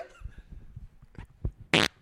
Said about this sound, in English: I have to fart, dude. I'm sorry. What? You just farted? No, I'm about to.